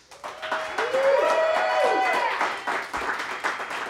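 An audience claps steadily for a few seconds, a dense rush of many hands, with a long rising cheer or whoop riding over the applause early on, applauding a live blues performance on the Songbirds Radio Hour.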